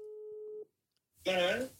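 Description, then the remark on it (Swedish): A single steady telephone ringing tone hums for about half a second while a call is placed, followed by a brief silence, and then a voice answers. “Du, jag ringer honom på en gång här nu.”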